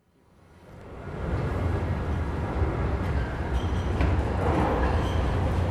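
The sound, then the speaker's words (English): An underground metro train rumbles while carrying passengers, its deep, steady roar rising in the first second and then holding loud and continuous, with faint rattles and a brief high squeal along the way. “Well, we're travelling on the metro at the minute, underground trains...”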